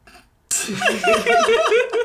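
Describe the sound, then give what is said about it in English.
A drawn-out voiced yawn opens with a sudden breathy rush, then a wavering, sliding moan with an odd squishy texture that lasts about a second and a half. “It made like a weird squishy sound.”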